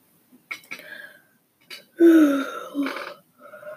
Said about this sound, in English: Oh my god, I'm yawning so much.